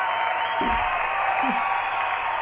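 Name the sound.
audience applause and cheering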